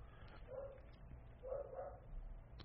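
A female dog barks at a ringing doorbell while sitting in place, two short bursts roughly a second apart, sounding muffled over a low background rumble, with no talking.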